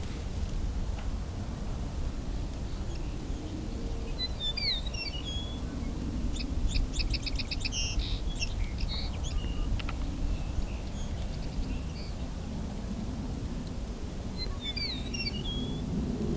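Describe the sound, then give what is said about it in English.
A song sparrow sings, a burst of sharp introductory notes running into a buzzy trill, with a shorter phrase near the end, over steady low outdoor rumble and wind. “And a song sparrow here too.”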